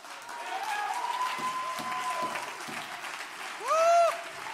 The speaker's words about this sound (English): Hey, I heard them hand claps, but I didn't feel that. I didn't feel that vibration like it ought to be.